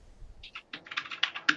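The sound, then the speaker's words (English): Rapid typing on a computer keyboard, a quick run of light plastic clicks and taps in an irregular rhythm, fairly quiet, with no voices. “I'll do breaking news and then do your keyboard, okay?”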